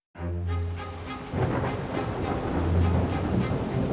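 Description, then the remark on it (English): A thunderstorm blowing through the Mediterranean rolls in, with deep rumbling thunder building over steady, hissing rain. The sound is loud, swelling partway through, and no one speaks. “In the spring of 1900, nearly 2,000 years after the Aelia shipwreck, another storm blew through the Mediterranean.”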